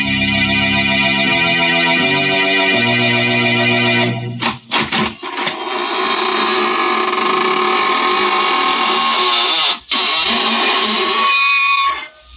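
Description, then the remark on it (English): A long, drawn-out creak of a squeaking door slowly opening, a loud, harmonic groaning whine that shifts pitch in steps, stutters briefly twice, then grinds on steadily, the signature squeaking door of the radio show Inner Sanctum Mysteries. No voices. “This is your host at the Squeaking Door again.”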